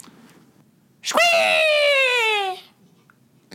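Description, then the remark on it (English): A person imitates a hawk's screech as a sound intro for talk about the Atlanta Hawks basketball team, with one loud, harsh cry that starts high and slides gradually downward, held for about a second and a half before cutting off. “Either way, it's a hawk noise.”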